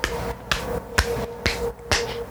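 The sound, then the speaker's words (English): Five sharp, evenly spaced claps, about two per second, from a single person. Each is a crisp, moderately loud smack over a faint steady hum, with no talking. “Biggest pussy over here clapping for me.”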